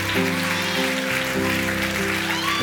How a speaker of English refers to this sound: There, come on, shout, stomp, clap, in Jesus' name, in Jesus' name.